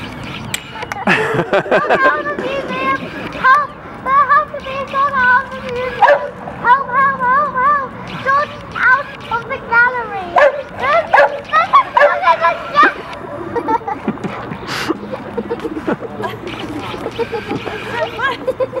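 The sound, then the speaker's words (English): A dog running around an art exhibition gallery barks and yips repeatedly in an excited, uneven rhythm, loud, with occasional whimpering whines and some background voices mixed in. “The dog's just dying to be recognised.”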